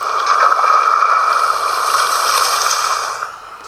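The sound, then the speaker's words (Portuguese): Water rushes and churns steadily for about three seconds, a loud bubbling wash as people dive into the sea on a sunny day, then fades quickly. No voices are heard. “No 3 mergulhamos, beleza?”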